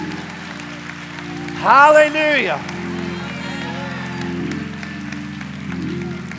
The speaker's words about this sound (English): If you believe that, give the Lord the biggest hand clap of praise. Next 30 seconds.